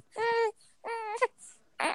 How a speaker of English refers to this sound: Wait, he sounds so cute when he cries. Listen.